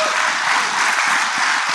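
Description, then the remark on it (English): A crowd claps steadily for under two seconds, a dense, even wash of many hands at once with no voices over it, as an audience answers a poll on who works on a development team of three people or less. “How many of you work on a development team that is 3 people or less? Clap.”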